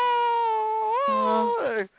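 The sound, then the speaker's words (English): A voice imitates an ambulance siren with one sustained, wailing tone that holds steady, swoops higher midway, then wavers and drops off abruptly after about two seconds. “They put the siren on, you know.”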